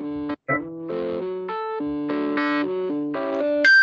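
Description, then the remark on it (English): A short, jazzy electronic riff generated from the chemical structure of vitamin B12, played from a phone: bright, buzzy synth notes that hop between pitches in a quick, uneven rhythm, with chord-like stabs and a higher held tone at the end. “So this is the chemical structure of vitamin B12. Turned into a jazzy little riff.”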